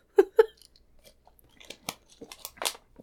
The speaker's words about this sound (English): Ah, I was taking a fresh sip of Pure Life water.